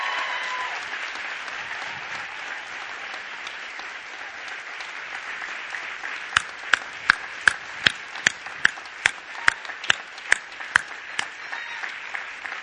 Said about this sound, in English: And if you listen real closely, you can hear them clapping all the way over there in Garner and in the coffee house and some people clapping at home. I am certain of it.